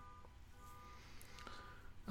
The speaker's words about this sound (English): There's a car alarm going off in the distance. I hope you can hear it.